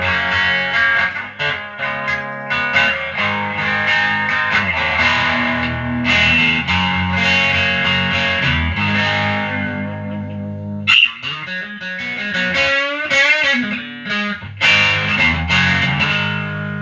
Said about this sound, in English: It gives it, like, Nito. It's just enough drive. It kind of has a weird classic overdrive pedal sound, but it's still a distortion. It can still rock, so I dig that.